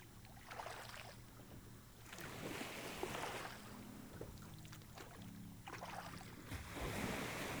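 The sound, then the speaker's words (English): Shallow waves wash softly onto the sandy beach of a small island's shallow lagoon in a few slow, rolling surges, steady, with a low rumble of wind or water beneath and no voices; a small rowing boat surfs the shallow wave onto the beach. “Your boat surfs the curve of the shallow wave which deposits you on the sandy beach.”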